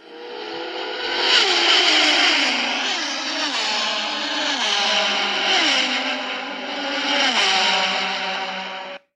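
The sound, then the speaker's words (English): A fast car engine revs hard, climbing in pitch and dropping back through several gear shifts, loud with a slightly processed, echoey quality. No one speaks. “That was me driving a really fast car to get where I have to go.”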